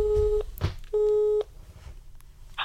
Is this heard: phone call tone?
yes